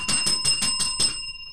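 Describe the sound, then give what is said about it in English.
A small bell rung rapidly in five quick, evenly spaced dings, bright, then a brief ringing tail fading out with no voices. “First of all, that's not how you use the bell, you idiot.”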